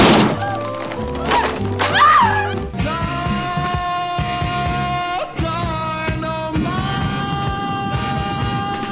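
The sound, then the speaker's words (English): A door being broken down: a few loud, heavy thuds and whacks in the opening seconds, then steady music with sustained tones takes over for the rest. “If you want to come in, you are going to have to break down the goddamn door!”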